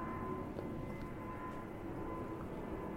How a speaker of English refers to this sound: Pausing for aeroplanes.